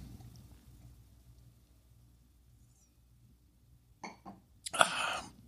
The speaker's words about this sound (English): And I'm going to take a sip.